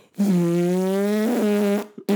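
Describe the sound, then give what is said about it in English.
A person imitates a weed whacker with their mouth: a loud, steady buzzing drone held for about a second and a half, wavering slightly near the end, then a brief clipped burst. “Do you remember weed whackers? Uh-huh. They used to be able to make a noise. I'm going to see if I can still do it.”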